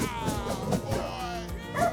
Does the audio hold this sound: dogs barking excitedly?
yes